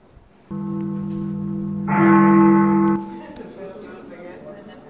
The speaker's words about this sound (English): The bells.